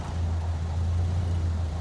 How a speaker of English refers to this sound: That's just a motor car. It's coming closer. Beats me why people are still going out driving in a storm like this. Look! Headlights! Up on the streetcar tracks! They're coming this way!